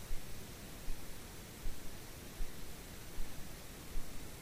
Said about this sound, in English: So that's just white noise, obviously.